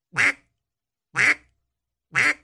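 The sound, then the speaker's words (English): Three short, clipped duck quacks imitated in a steady rhythm, about a second apart, each one brief and nasal, loud with silence between and no talking. “One of the common mistakes a lot of people make is they're making the quack too long.”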